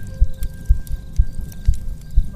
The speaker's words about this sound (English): To their surprise, she still had a heartbeat.